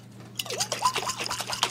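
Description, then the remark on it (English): Liquid sloshes and splashes inside a lid-sealed jar of olive oil and boiling water being shaken, a quick, uneven rhythm of wet bursts starting after a brief quiet moment, over a low steady hum. “We poured boiling water into a jar of olive oil. Seal with a lid. Okay, I'm going to shake this.”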